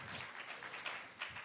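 An audience claps for a brief moment, a dense, steady patter of many hands at a moderate level, with no voices over it.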